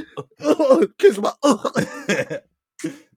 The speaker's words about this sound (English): But excuse my cough. It's not this. Excuse my cough.